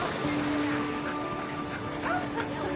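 A dog barks and whimpers, with short yips and whiny cries over a steady background hum; a few brief vocal sounds come near the end.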